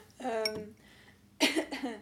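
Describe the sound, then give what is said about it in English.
A brief voiced sound, a quiet pause, then a loud cough that comes out in two quick rough bursts near the end. “I've got, like, need to cough.”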